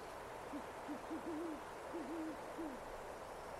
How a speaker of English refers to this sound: This is something I stole from the internet, by the way, and then messed around with, so. You can hear the hoot of an owl.